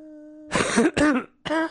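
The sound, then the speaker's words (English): Three quick, harsh coughs in a studio, the first two in rapid succession and the last after a short pause, over a faint steady hum. “That's a good cough.”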